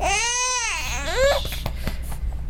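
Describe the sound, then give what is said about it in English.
A baby girl being burped, who wants her bottle back, lets out a loud, wavering cry that rises and falls in pitch, then breaks into shorter fussy whimpers and sputters, with no talking over it. “we're burping a baby. She doesn't want to burp.”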